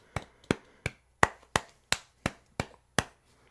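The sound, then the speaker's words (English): A single pair of hands gives a golf clap, clapping softly and steadily, nine sharp, light claps at an even pace with short decays between them, quiet and unaccompanied by voices. “It's a golf clap, though. So it can't be louder.”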